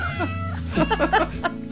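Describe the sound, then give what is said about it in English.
A cat meows a quick string of pitched, melodic notes to the tune of Silent Night, rising and falling, loud over a low steady hum, with no talking. “Cat singing Silent Night.”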